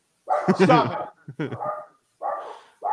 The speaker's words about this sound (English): Stop it! Oh, now they're barking at my wife's inside. I'll close the door. Okay, they're out there.